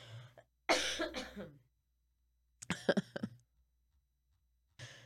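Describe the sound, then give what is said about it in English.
Harsh coughing: one rough drawn-out cough, a pause, then a quick cluster of shorter hacking coughs that shade into throat clearing, with silence between. “I don't want to cough.”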